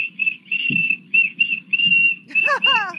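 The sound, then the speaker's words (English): A toy whistle shaped like the Wienermobile blown in a series of short, loud, shrill bursts at a steady high pitch, ending with a couple of wavering, sliding toots, over faint background rumble. “One of our listeners, Max tells me, is going to demonstrate the Wiener whistle.”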